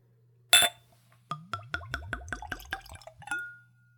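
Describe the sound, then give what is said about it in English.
A short clink of glass, then a quick glugging pour of whiskey into a clean, tulip-shaped Glencairn whiskey nosing glass, bubbling in a rapid rhythm for about two seconds before ending with a soft clink. Clear, no talking. “It's a whiskey nosing glass, tulip-shaped, so we can see the spirit, nose the spirit, of course, taste the spirit. Let's go for a pour.”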